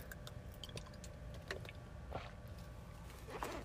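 Someone drinks water, with a few quiet wet sips and gulping swallows spaced out over a few seconds against a soft background hum. No one speaks.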